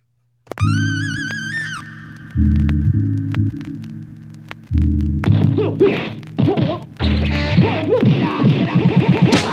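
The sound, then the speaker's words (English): A loud instrumental theme song kicks in abruptly with heavy droning bass chords and a warbling high synth line, then builds into busier, punchy percussive hits. No one speaks. “I'll hit the song, really do the thing, all that good stuff.”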